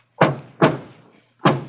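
Three dull knocks on a wall, two close together and then a third after a short pause, each with a brief resonant decay, heard alone and fairly close.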